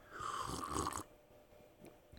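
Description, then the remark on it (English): A drawn-out slurping sip from a chalice, picked up on a new microphone, lasts about a second, with a whistly airy tone, followed by near silence and a short sharp click at the very end. “Main reason we got this new microphone is so when I take a sip out of the chalice, the audio is picked up on the mic.”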